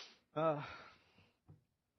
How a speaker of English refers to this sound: So I'm still kind of breathing hard.